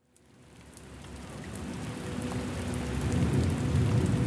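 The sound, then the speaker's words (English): A sudden storm on a hillside: heavy rain pours down steadily, swelling louder over a few seconds, with a deep rumbling of thunder rolling underneath. No voices are heard. “From out of nowhere, a storm was upon the hillside.”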